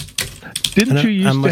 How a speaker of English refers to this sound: You should hear what it'd be like with my old keyboard.